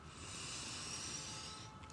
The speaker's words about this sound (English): Breathing in together again, we are now going to repeat.